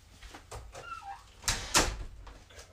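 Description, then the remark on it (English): A door is pushed shut, with two quick knocks of the latch and slam, while a few faint bird chirps are heard. “But, matter of fact, I'm going to shut the door. Shut the door real quick.”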